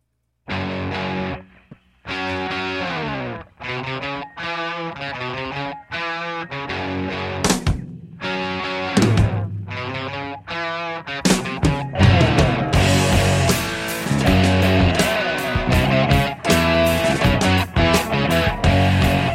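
A hard rock song driven by loud, distorted electric guitar, opening with choppy stop-start chords before the full band kicks in with a thick, dense wall of sound.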